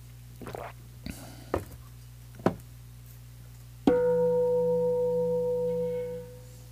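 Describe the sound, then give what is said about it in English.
A single meditation bell is struck, its clear ringing tone with steady harmonic overtones sustaining for nearly three seconds before fading. A few soft rustles and taps come before it, over a low steady hum. “Just, I'll ring the bell to make it official.”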